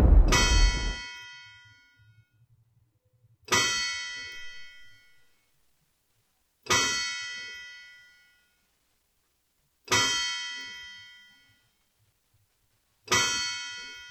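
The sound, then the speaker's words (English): The Murfreesboro courthouse clock bell in Rutherford County tolls at 6 o'clock, five slow, evenly spaced strikes, each a bright, ringing metallic tone that hums and fades before the next one sounds. No voices are heard. “The Courthouse Clock shows at 6 o'clock.”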